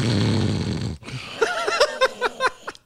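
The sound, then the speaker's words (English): A voice imitates a sleeping woman snoring: one long, rough, rattling snore, then a series of short, squeaky, wheezing bursts in an uneven rhythm. “Thank God there was no mics because she'd be snoring.”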